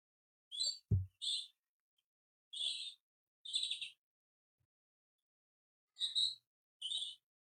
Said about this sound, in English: You might hear the robin.